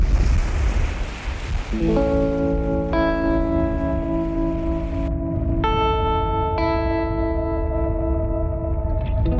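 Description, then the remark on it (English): Steady North Atlantic ocean surf washes continuously onto a beach, a loud broad rush of waves, with sustained musical chords fading in after a couple of seconds and playing over it. “There's nothing like the North Atlantic. It's majestic. I love the beach.”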